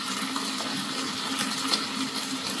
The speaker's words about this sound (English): And a little more pasta water now.